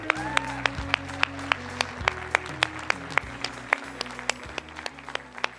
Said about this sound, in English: All right, let's give all our amazing kids a round of applause.